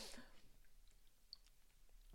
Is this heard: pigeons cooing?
no